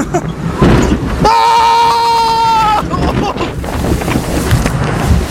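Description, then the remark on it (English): Loud rushing, splashing water from the Viking Voyager water ride at an amusement park in Kansas City, with wind buffeting the recorder, which got splashed, and a steady horn-like tone sounding for about a second and a half in the middle. “Recorder got a little bit of water. I better dry it off on my shirt. But Neverlanders, that was the Viking Voyager.”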